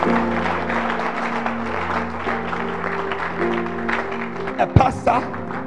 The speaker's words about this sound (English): You can clap your hands if you want to clap.